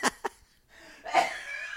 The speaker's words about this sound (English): Oh, great. Oh, now we're having a coughing fit in the middle of the show.